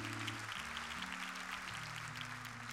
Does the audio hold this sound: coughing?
no